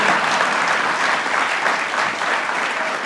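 A crowd applauds steadily, a dense wash of clapping that holds at an even, fairly loud level throughout, with no voices breaking through.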